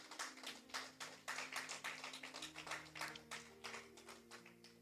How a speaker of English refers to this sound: Thank you, Jesus. Give a clap offering unto God.